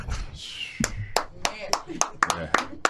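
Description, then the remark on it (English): A single person claps about nine times in a quick, steady, crisp rhythm, after a brief burst of voice at the start. “I applaud that too, man.”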